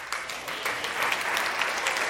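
A crowd claps steadily, a dense patter of many hands that holds at an even, fairly loud level throughout, with no voices breaking through.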